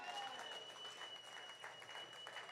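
An audience at a live show applauds steadily as a kid is called up to the stage, a dense wash of many hands clapping at once that holds an even level throughout without building or fading.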